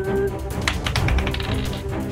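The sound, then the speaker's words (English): A twenty-sided die (D20) rattles and clatters across a hard surface, a quick run of sharp, dry clicks and taps over about two seconds, with a steady tonal background hum beneath it. “D20, here we go.”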